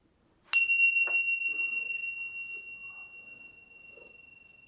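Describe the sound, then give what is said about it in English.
A single meditation bell, the third bell at the close of a practice, is struck once, its bright, pure tone ringing out clearly and then slowly fading over several seconds. “Fluttering the eyes open and closed with the third bell.”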